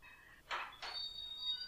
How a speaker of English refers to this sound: She can't even get in the house. The door's locked.